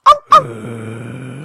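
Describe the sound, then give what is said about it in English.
A person imitates a dog: two sharp, loud barks in quick succession, then a long, low rumbling growl, with another bark just starting at the end. Forceful. “Where my dog's at?”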